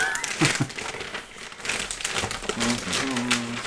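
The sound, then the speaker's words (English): Paper crinkles and rustles in dense, irregular bursts as a gift is unwrapped, with a voice murmuring faintly in the background near the end. “Don't tear the paper.”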